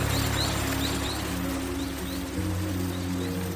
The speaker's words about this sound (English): Listen to the rain's rhythm, a gentle reminder of the world's natural cycles.